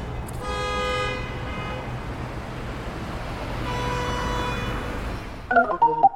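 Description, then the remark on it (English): Two long, blaring car horn blasts sound over a steady rumble of idling bumper-to-bumper holiday traffic at the intersection of I-70 and Wadsworth, one after the other, followed by a brief burst of quick electronic beeps. “Now we take you live to the intersection of I-70 and Wadsworth, where many holiday travelers are sitting in bumper-to-bumper traffic.”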